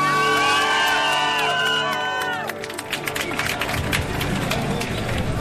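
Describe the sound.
A crowd at the Marcha del Orgullo Crítico (Critical Pride March) bursts into loud cheering and whooping, many voices rising together, then the noise gives way to steady rapid applause with scattered shouts continuing.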